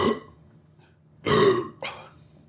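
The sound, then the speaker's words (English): A couple of loud burps after a drinking toast, a short one at the start and then a long rumbling belch followed quickly by a smaller one, with no talking. “All right, so it's about 1 minute in. We've already got burps.”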